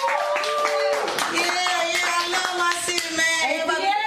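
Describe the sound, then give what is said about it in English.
A live-show audience, called on as people from Atlanta, claps steadily throughout, the scattered hand claps mixed with loud whoops and cheering voices that hold sustained tones over the applause. “Clap it up. Clap it up.”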